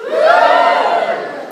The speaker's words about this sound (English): If you had the opportunity to have a tea, a coffee, a piece of fruit, a drink of juice, give me a cheer.